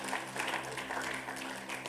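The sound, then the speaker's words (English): A crowd applauds steadily as a clap offering to the Lord, many hands clapping at once in a dense, continuous patter, with a faint low hum underneath. “Give the Lord a clap offering in the name of Jesus.”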